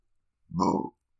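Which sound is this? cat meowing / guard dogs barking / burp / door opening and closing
burp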